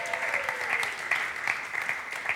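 A crowd applauds steadily, a dense, even wash of many hands clapping at a fairly constant level for the whole moment, with no voices standing out.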